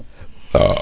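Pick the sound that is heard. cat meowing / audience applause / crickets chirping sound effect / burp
burp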